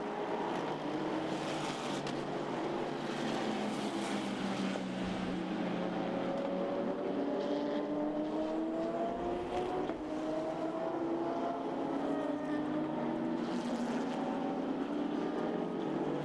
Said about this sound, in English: Still waiting for the first cars to come around here at Spa. Aston Martin heading up to the top of the hill.